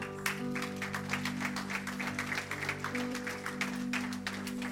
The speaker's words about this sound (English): Can we just either lift our hands or clap our hands here for a moment?